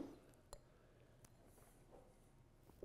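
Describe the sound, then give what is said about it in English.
Beer glasses clink together in a toast before a first taste of a coconut beer, a bright tap followed by a softer second knock, fairly quiet against a low room hum with no talking. “I haven't had it yet, so this is gonna be our first time trying it. Cheers.”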